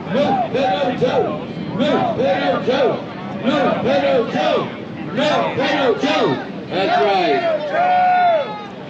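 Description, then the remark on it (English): A crowd at a Donald Trump rally chants in unison, many voices rising and falling in repeated rhythmic phrases, loud and sustained with brief dips between bursts, ending on a long drawn-out shout. “Soon the crowd breaks into a chant.”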